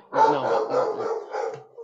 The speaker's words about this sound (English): dog is barking.